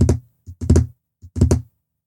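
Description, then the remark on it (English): French-tip acrylic fingernails click on a desk finger by finger in quick rolling bursts, several taps rippling together, then a pause before another wave. Crisp, with no voices. “She clicks her French tip acrylics on the desk, finger by finger, a clicking wave.”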